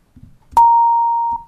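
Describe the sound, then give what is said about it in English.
A steady synthesized tone, a kick drum sound being reshaped toward a violin with raised pitch, longer amplitude decay and its pitch swoop removed, starts with a sharp click and holds one unchanging pitch for about a second before cutting off; brief low voice-like murmurs sit before and after it. “Okay, now I'm going to get rid of my swooping.”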